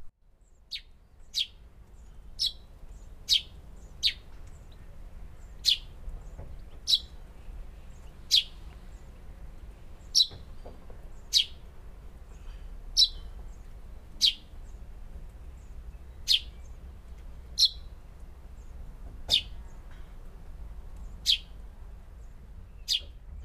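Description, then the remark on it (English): A tree sparrow gives a steady series of short, bright chirps, about one every second, clear over a quiet low rumble of outdoor background. “The tree sparrow has a song similar to the house sparrow, but I always think it's a bit more cheerful.”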